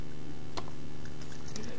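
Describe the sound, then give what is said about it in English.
Church keys being picked up and handled, with a few sharp metallic clinks and jingles scattered over under two seconds against a steady low background hum, fairly quiet. “And I actually forgot to get my keys, because I wanted my keys.”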